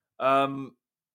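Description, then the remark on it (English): A single drawn-out cat meow, fairly loud, lasting about half a second with a slight drop in pitch at the end, with no other sounds around it. “Cat for you. That's Lola.”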